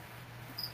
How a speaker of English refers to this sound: Shut up, crickets! They don't listen. They don't. They just don't stop. Can't stop. Won't stop.